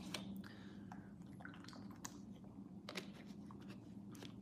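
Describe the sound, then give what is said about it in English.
Someone sips and swallows water, with a series of wet mouth clicks and gulps scattered over a few seconds against a low steady hum, no talking. “I feel like my mouth is super dry. I might have some more water.”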